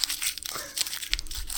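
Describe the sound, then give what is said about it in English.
Crumpled paper letter being unfolded and opened, a burst of crinkling and rustling with a few sharper crackles, heard on its own without talking. “Let me open this one. Dennis has the new Paperwhite email system. Wait a second. This one came all crumpled up.”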